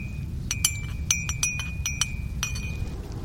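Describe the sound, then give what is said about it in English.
A spoon clinks repeatedly against a mug while dandelion coffee is made from roasted, ground dandelion roots and boiling water, with sharp taps in an irregular rhythm over a steady low rumble and a faint ringing tone. “Let me get the boiling water ready. Put it in my mug, and we can make some dandelion coffee.”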